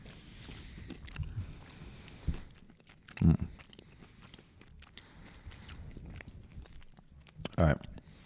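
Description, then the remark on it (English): Wet chewing and gnawing on chocolate in Fayetteville, Arkansas, soft mouth noises with two sharper crunchy bites standing out above a low, steady background. “But most of them know me well enough that I might be gnawing on some chocolate with my brother in Fayetteville, Arkansas.”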